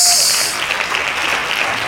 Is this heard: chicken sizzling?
no